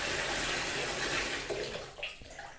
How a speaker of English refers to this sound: You turn on the water. Okay, that's beginning to fill up. Kind of what you expect from a bathtub. Yeah, it's filling up pretty nicely.